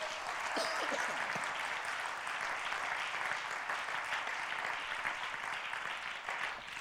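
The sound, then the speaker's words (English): A large crowd claps steadily in dense, continuous applause, a broad wash of many hands that holds its level throughout, with faint voices mingling underneath, giving a hand clap of praise after a prayer in Jesus' name, before being seated. “One more good hand clap of praise before you're seated.”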